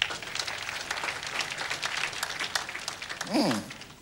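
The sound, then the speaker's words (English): A crowd applauds a female speaker steadily for about four seconds, a dense patter of many hands clapping at moderate volume, with a brief voiced cheer or shout rising near the end. “Clap for her.”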